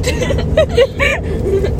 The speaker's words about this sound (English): We're in the car right now with four other people. So, yay. They're kind enough to be quiet, even though we are not. They're not even paying attention. We're driving to a camp right now.